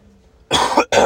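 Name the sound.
coughing and throat clearing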